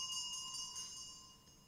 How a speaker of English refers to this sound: Just quietly with that bell.